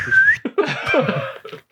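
A person whistles loudly to hail a cab, opening with a shrill rising-and-falling note, followed by a second, breathier whistled phrase that wavers and trails off, with no talking.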